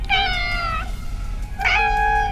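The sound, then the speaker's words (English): Someone mimics a little cat with two drawn-out meows, a high, tonal wail followed after a short pause by a second rising one, loud with no other talking. “And then it meows again and the whole fucking thing vibrates and there's that big thrum and the little cat's like...”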